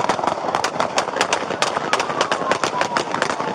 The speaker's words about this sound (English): It looks like police may have the suspect cornered in a parking lot. But he takes off again, and a barrage of shots ring out.